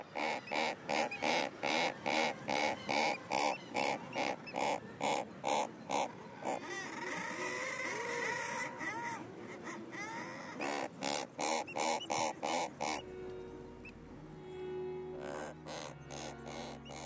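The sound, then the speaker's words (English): Razorbill calls from a nest crevice in rocks: a rapid, steady series of short, reverberant grunting pulses, broken midway by a longer, drawn-out growling call, then more pulses trailing into lower tones. No talking. “And razorbills seem to use their immediate acoustics of the crevices and holes in which they nest and vocalise to produce this short reverberant call.”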